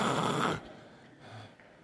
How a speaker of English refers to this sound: They're out. They're snoring. They're sleeping. They're in church.